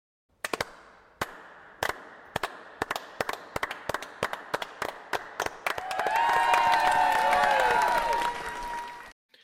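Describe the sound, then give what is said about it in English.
Sharp single claps ring out at a slow, steady pace in a bar after an arm-wrestling win, gradually quickening, until the crowd breaks into loud cheering and whistling over the continuing claps. “Did you get the slow clap?”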